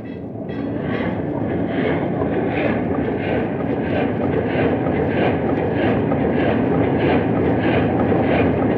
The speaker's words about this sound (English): Try the engines. There, Chief. Yes, sir. We'll try the engines. Ready, Chief? Yes, sir. Full steam astern.